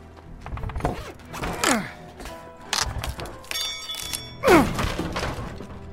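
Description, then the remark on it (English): Heavy prying with a crowbar: dull thuds and knocks mixed with straining metallic creaks and groaning squeals as something is forced open, a final loud wrenching creak near the end. “Crowbar.”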